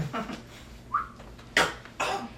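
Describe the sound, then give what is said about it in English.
A single short whistle, a quick rising note at moderate volume, followed by two breathy, noisy bursts like sharp exhales, over quiet background noise. “You're about to whistle, and then stab!”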